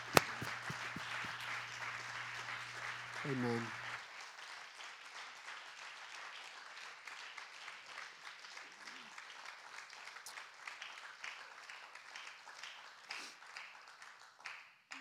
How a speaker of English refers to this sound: I wonder if we could clap and appreciate your pastor today.